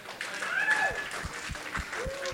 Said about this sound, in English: I'm not, that is not a, I didn't enjoy that little clap, and neither did y'all, I could tell.